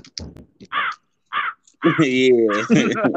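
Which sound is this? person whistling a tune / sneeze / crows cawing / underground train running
crows cawing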